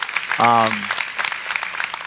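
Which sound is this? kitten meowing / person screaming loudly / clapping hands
clapping hands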